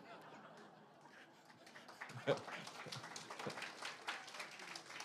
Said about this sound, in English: So this morning, I hope your applause is sincere.